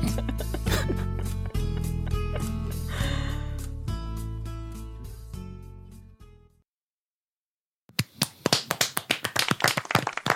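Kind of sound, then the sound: crowd, small group clapping hands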